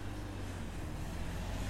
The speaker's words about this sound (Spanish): Deja que se pase ese coche.